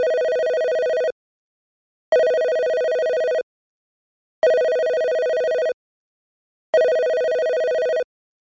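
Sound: telephone ringing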